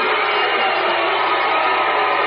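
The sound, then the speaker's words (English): A large basketball game crowd roars continuously and loudly after a foul call, a dense wash of mixed booing and cheering with no clear pauses, holding steady throughout. “Some of the crowd booing, some of the crowd cheering.”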